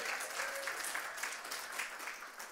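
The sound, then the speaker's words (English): A church audience claps steadily, a dense wash of many hands sustained at an even, moderate level through the whole stretch with no voices standing out. “And that's what we can clap, yeah.”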